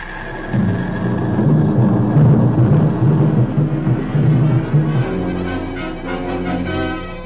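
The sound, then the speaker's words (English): Bombs dropped by Japanese planes explode on Pearl Harbor, Honolulu, in a continuous rumbling roar over the drone of aircraft engines, loud and dense for several seconds before thinning into scattered booms. No one speaks. “You can hear the bombs exploding.”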